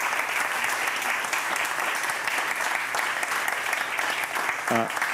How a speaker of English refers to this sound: All right, great. Well, I think we're going to have to leave it there. Let's have another big round of applause. Thank you.